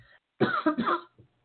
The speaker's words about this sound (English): You know, when I clear my throat, this year is so crazy. I feel like I need to apologize to my audience and say, hey, seriously, don't worry. I'm not coughing because I'm sick. I'm not coughing because I have some sort of contagion